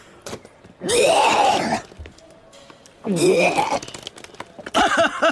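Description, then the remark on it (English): Three loud bouts of retching and vomiting: strained, throaty heaves with gurgling, groaning gags, separated by brief quiet gaps, the last burst shorter and choppier. “Oh, it looks like we need to get you a t-shirt that says Barf Machine!”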